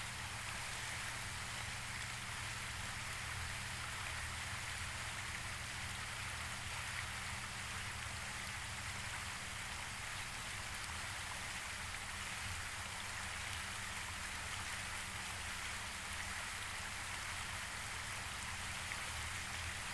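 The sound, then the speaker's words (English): Steady, continuous water sound like rain pattering on a surface, a dense even hiss with a low rumble underneath, unchanging for the full length and with no voices. “Now, all I want you to do is focus and concentrate all of your awareness and attention on the sound of the water.”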